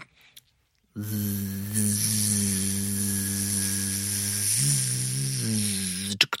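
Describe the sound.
A voice imitates the sound of a tattoo machine heard while getting tattooed, with a steady, low, droning buzz and a hissy edge. It holds for about five seconds, wavering briefly in pitch near the end, then cuts off.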